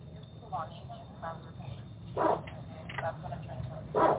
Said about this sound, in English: Is that a large dog? They never bring those on. I wonder if it's the reptilian barking.